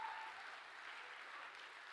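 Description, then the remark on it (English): An audience claps together as a clap of praise to God, in a sustained, dense burst of applause, steady and fairly loud throughout, with many hands blending into a continuous wash of sound and no speech over it. “Come on, let's give God a big clap of praise right now.”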